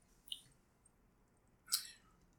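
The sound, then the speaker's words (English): A quiet sip from a can of strawberry tangerine flavored drink: a brief faint slurp, then after a pause a longer, hissy slurping sip, with no talking. “Let me take another sip.”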